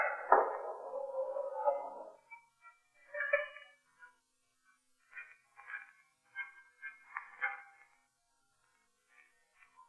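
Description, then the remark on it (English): A payphone call being placed from a phone booth at Benny's Fantasy Club: a brief clatter at the start, then a string of short electronic dialing tones and intermittent ringing bursts, fairly quiet, with no one talking. “Any payphones here? Yeah, two of them over there by the check.”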